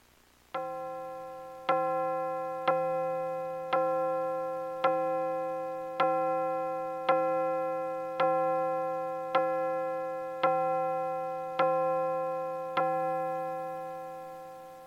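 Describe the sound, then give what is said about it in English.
A clock chimes about a dozen times late at night at Christmas, in a slow, steady rhythm, each ringing, bell-like strike fading into the next. The chimes are clear, with no voices. “The clock chimes have wished us a Merry Christmas just as bells have been doing for centuries.”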